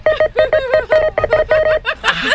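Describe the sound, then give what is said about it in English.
A rapid string of short, bright electronic beeps, about eight in quick succession, fairly loud, from a checkout scanner as a cashier scans many items very fast, ending in a brief burst of noisy rustle. “I started picking out Morse code. She was scanning so much, so fast.”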